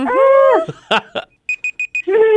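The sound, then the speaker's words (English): A game countdown timer goes off with four quick, evenly spaced high electronic beeps, loud, sandwiched between short bursts of voices before and after. “Right in before the timer.”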